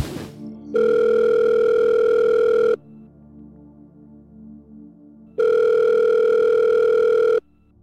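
A telephone tone heard through the line during a call made on a burner phone: two long, steady electronic tones, each about two seconds, separated by a quiet pause with faint background hum. No one speaks.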